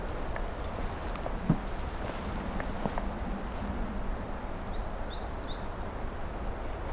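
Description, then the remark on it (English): A black-and-white warbler sings a high run of repeated squeaky two-note phrases, heard twice, its song less thin than usual and closer to a redstart's tonality, over steady low rustling and a few soft footstep-like thuds. “I'm used to black and white warblers being a bit more thin in their song.”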